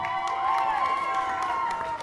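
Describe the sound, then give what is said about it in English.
A burst of cheering and whooping from a small crowd, steady and fairly loud throughout, with overlapping voices and occasional sharp claps or shouts. “Was that just you cheering yourself”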